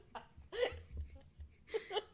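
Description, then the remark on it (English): A baby girl gives several short, sharp coughs or hiccup-like bursts while low, soft rumbling farts sputter underneath between them. “Is she farting? She's farting. Coughing and farting.”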